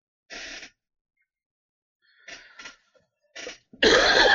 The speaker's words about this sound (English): Sick of this cough.